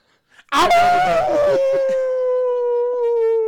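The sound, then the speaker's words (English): A loud wolf howl bursts in with a rough, breathy onset, then settles into one long sustained tone that slowly sinks in pitch, heard alone with no talking. “Guys, wolves. We're deep in it now.”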